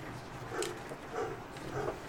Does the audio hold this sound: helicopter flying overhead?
no